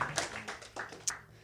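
A brief stretch of applause for a reader at a reading event: several sharp, scattered hand claps ring out over a low steady hum, uneven in rhythm and moderately loud, with no voices.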